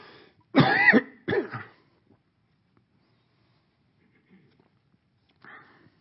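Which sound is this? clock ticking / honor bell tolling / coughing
coughing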